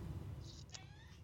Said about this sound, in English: Oh, there's the kitty.